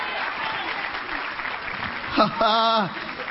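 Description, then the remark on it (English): A church audience claps in a dense, steady wash of applause during a sermon, then a loud voice cuts in near the end, briefly rising over the clapping. “Come on, clap your hand.”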